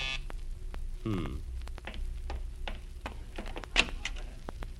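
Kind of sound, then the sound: signal or alarm, doorbell ringing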